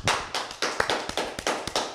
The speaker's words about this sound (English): Can I get a round of applause, baby?